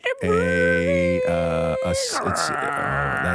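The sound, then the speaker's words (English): A person's voice imitates a dial-up modem connecting: a steady, loud droning tone that warbles and shifts pitch, then breaks into short hissy, crackling bursts and garbled tones for about three seconds. “Dial-up internet. Yes.”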